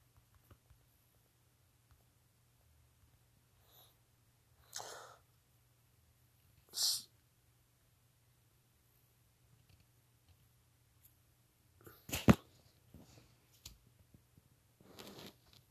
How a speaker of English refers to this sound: Sorry, I had to sneeze.